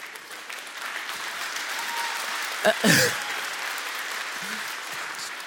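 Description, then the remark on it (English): Thin, scattered audience applause runs steadily at a modest level, with a brief louder burst of clapping near the middle before settling back into the same subdued patter. “I call that a grudging applause.”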